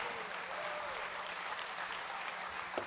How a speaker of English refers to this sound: Would you give a Lord a hand clap here?